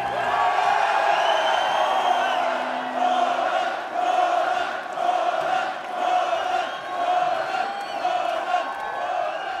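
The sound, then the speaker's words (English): A large concert crowd chants the names of the band members in unison, voices rising and falling in a steady, repeating rhythm, loud and continuous with cheers mixed in throughout. “They're chanting the names of the band members, which I love to see that.”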